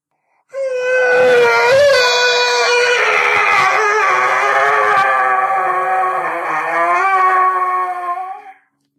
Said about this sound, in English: This time, the screaming lasts for much longer.